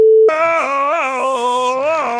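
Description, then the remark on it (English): A telephone call sound effect: a short steady beep, then a loud, buzzy, sustained tone that wavers up and down in pitch for about two seconds, with no one talking. “Who's that on the phone? Oh, it's Johnny.”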